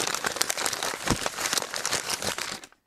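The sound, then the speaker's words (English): A sheet of paper falls onto a desk and is handled and crinkled, with dense, continuous crackling and rustling for a few seconds before it stops abruptly. “All right, so now there's a piece of paper falling down onto the desk.”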